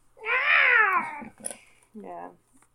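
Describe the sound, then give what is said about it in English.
A person imitates a cat yowling: one long, wavering, drawn-out cry that slides downward, then a short pause and a brief second shorter yowl, loud. “It'll be a cat yowling.”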